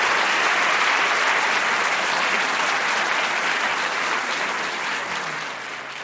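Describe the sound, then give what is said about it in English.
An audience claps for four debaters after a debate, in a dense, sustained burst of applause that stays loud throughout and eases off slightly toward the end, with no voices on top. “were four people who disagreed vehemently on something very personal, meaningful, and metaphysical, and yet they did it in a respectful way, and I have to really give them a round of applause for the way they did that.”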